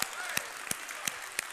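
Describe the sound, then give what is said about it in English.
A church audience claps hands to the Lord in steady unison, with sharp, loud beats landing about three times per second over a continuous wash of scattered clapping and crowd noise. “Oh, let's clap our hands to the Lord.”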